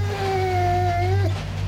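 A dog named Teddy Bear lets out one long, high whining cry that holds a steady pitch before bending downward and cutting off, over a constant low rumble.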